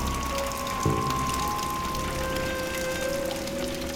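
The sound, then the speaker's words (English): Steady rain patters and drips through holes in a roof onto a concrete floor, a continuous wet hiss with scattered droplets and a faint low hum, no voices. “A cold wind rattled the broken glass in the windows, and rain dripped through the holes in the roof.”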